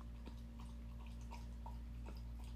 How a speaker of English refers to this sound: He's literally licking drinking water right now, and it's gonna be in the audio, and that's so annoying. I'm gonna let him have his moment.